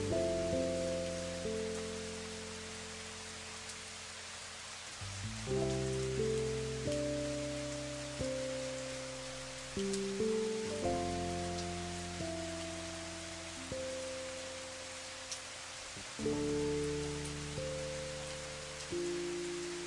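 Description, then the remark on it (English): Steady rain patters continuously on a hard surface, a soft, even hiss beneath slow, sustained chords of calm music that shift every few seconds. No one speaks. “Of rain.”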